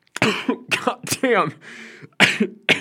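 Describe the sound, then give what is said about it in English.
A loud coughing fit after choking: five or six harsh, raspy coughs in irregular bursts, broken by a short strained spoken exclamation partway through. “I just choked on, I don't know, nucleotides and DNA.”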